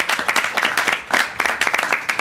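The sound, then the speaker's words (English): A short burst of applause from a small group, many hands clapping in a dense, uneven patter at steady volume for about two seconds. “Round of applause.”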